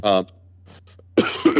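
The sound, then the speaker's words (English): A person coughs: a short voiced hack, a brief pause with faint breathy sounds, then a harsher, longer burst of rough coughing over a low steady hum. “I say as I cough my lungs out.”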